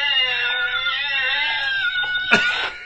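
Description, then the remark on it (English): A young girl, Drew Barrymore in the film E.T., lets out a long, shrill, sustained scream with a wavering pitch, holding for nearly three seconds before a sharp, harsh burst near the end, no talking. “That is that Drew Barrymore screaming her head off?”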